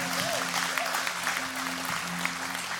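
A crowd at an Easter weekend church service claps for those who raised their hand after a prayer, in steady, dense applause that holds at an even level for a few seconds, with a low sustained hum running underneath.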